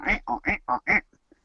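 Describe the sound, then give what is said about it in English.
A little bike horn honks five times in a quick, bouncy rhythm during a wrestling match, each squeeze loud and nasal, almost like a duck's quack, then it stops and only faint noise remains. “Vince is laughing at Dink and his little bike horn bouncing on the ropes”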